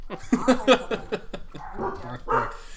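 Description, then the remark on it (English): A dog barks at the mailman repeatedly in quick, sharp, loud bursts, followed by a couple of longer, higher yelping barks toward the end. “It would not be a podcast without my dogs barking.”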